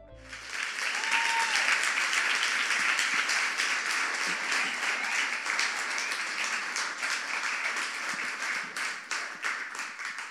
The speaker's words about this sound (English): Let's clap our hands.